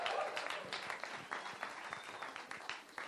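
A crowd gives a St. Basil's cheer welcoming the day's preacher, clapping and cheering together, a dense, steady wash of applause with scattered sharp hand claps and a few raised voices, sustained at moderate loudness throughout.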